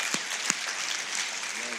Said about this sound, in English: Can you guys give these guys a round of applause this morning, please?